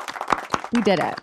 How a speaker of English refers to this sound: Just a big round of applause for us. I'm going to clap for us.